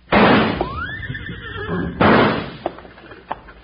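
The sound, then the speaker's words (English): A horse whinnies loudly between two heavy bursts of noise as two horses take off running, then a few scattered thumps trail off as the commotion fades. No voices. “Them two horses took off like they were heading for the barn.”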